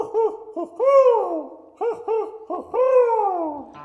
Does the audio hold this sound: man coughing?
no